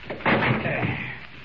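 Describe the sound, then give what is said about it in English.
A heavy wooden thud with a splintering crack, then a rattling, scraping rumble as a locked door off a terrace is forced open and gives way, trailing off over about a second. “I don't see any lights, but that door should lead somewhere. Locked. I'll have to force it.”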